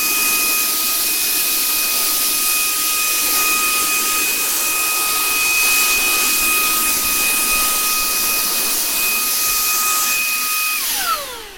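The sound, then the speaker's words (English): A cordless vacuum cleaner runs steadily and loudly while vacuuming a floor, its airy rush topped by a high-pitched motor whine, then winds down with a falling pitch as it is switched off with a button. “And I'm vacuuming up the floor a little bit.”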